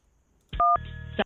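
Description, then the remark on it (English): A single short telephone keypad tone beeps as keys are pressed on an automated phone line menu, then a longer buzzy electronic tone holds for about half a second, loud with no voices. “Enter the 4-digit private number of the babe of your choice. Or press the pound key for a hot girl who's available.”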